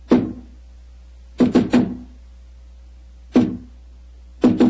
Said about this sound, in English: Who knocks? Number 7. Give the password.